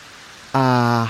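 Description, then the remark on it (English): Steady rain hisses in the background, a soft continuous wash of falling drops, before a voice breaks in halfway through with a sustained, loud vocal sound over the rain. “And it's going to stop raining in...”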